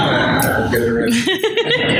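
A loud fart: a low, buzzy, sputtering sound with a rising pitched squeak that lasts about two seconds, followed by a brief chuckle.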